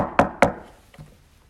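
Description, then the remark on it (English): Peter knocks on the wooden door of Mary's house: two sharp knocks in quick succession, followed by a softer third tap and a brief hollow ring fading into quiet. “He goes to Mary's house and knocks on the door.”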